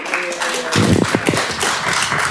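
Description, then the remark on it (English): A scattered round of clapping from several people breaks out in an echoing legislative chamber, starting abruptly after a brief murmur of voices and continuing as a steady patter. “There is no clapping in the chamber.”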